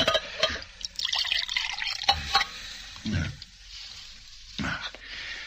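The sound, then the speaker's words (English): Water is poured from a pitcher in several short, splashy bursts, with soft knocks as the pitcher is handled and set down between pours. “Say, would you mind bringing me that pitcher of water right there?”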